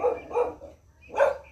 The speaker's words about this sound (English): And then the dogs barking just to hear themselves bark.